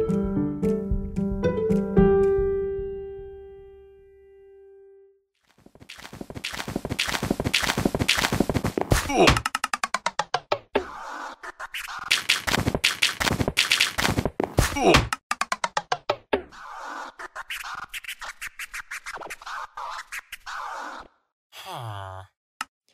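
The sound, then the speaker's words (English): A song built entirely from Minecraft sound effects: sustained sighing tones at the start, then a driving rhythm of clicks, thuds, footstep-like taps and whooshes, with no one talking. “The song you're listening to right now is created entirely from Minecraft sounds”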